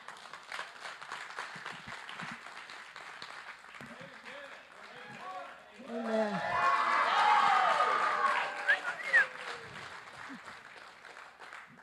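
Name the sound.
audience applause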